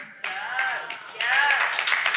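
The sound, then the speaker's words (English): Scattered audience clapping during a sermon, with cheering voices mixed in, starting abruptly and then swelling louder about halfway through as more people join. “Now, some of you clapped, but some of you didn't because you're kind of like, meh.”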